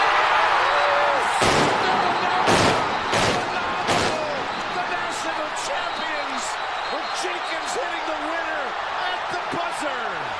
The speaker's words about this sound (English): The way the fireworks and everything goes off right when the ball goes in the hoop could not have been more perfectly timed and cooler in the moment. And the fireworks sounded so weird. Like the fireworks sounds like gunshots. Like it's crazy.